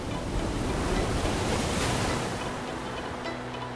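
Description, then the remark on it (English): Steady roar of cold, choppy ocean surf, waves churning and washing continuously with a gusty wind rush over the top, fairly loud, no voices. “Anyone who had enough strength for the job was welcomed on the cold and choppy seas.”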